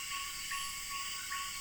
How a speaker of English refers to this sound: It is dusk. Insects and frogs call all around, and a ferruginous pygmy owl gives steady toots from its perch in a nearby tree.